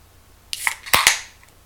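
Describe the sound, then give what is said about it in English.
A beer can from a six-pack cracks open: a brief metallic scrape, then two sharp pops followed by a bright fizzing hiss that fades out within about a second. No voices. “Let's crack this one.”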